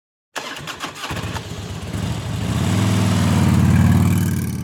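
A motorcycle engine cranks over with a few rough sputters, catches, then revs up into a loud, steady throaty rumble. No voices are heard.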